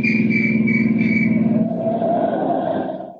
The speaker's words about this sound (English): The road makes a sudden turn, and in the twilight he sees men in uniform barring his way. A police whistle stabs the quiet.